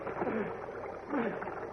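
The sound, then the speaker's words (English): Loud, steady rushing of fast-moving water, a broad churning roar with surging swells and no clear pauses: a current sweeping at breakneck speed into a wider, icy cold mountain torrent. “Superman is searching for Lois and Horatio, who, having made their way out of the submerged car, are clinging desperately to a slippery log and are being swept by the current at breakneck speed into a wider, icy cold mountain torrent.”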